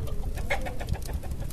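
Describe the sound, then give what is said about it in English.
Chickens cluck in a quick series of short calls over a steady low background rumble, with no talking. “What's that noise? Oh, right, there's chickens in here.”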